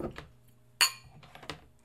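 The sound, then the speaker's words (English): Glasses clink together once in a toast, a bright ring that shimmers briefly before fading, followed by softer knocks and faint handling noise. “All of my cups. Woo! I have so many cups.”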